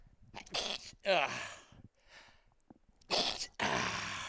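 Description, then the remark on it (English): A loud run of sneezes, several sharp bursts with a breathy build-up before them and a brief pause partway through, with no talking in between. “Okay. Sneezing fit over.”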